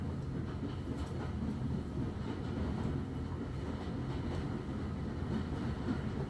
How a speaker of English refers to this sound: All to carry this magical train. Yet again you have heard others speak of this gorgeous railway bridge. But to see it with your own eyes is magical.